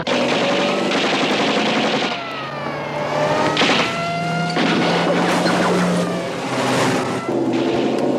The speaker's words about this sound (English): shooting a Tommy gun out of the back of a car being chased through this desert prairie land by a police vehicle with these blaring sirens.